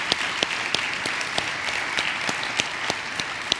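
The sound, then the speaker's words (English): An audience claps steadily for a group of graduates being honored in the morning, a dense wash of overlapping hand claps with a few sharper individual claps popping out, holding at an even, moderate level throughout. “Can you guys give them just one more round of applause?”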